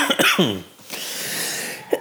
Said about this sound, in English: Forgive me for my cough today.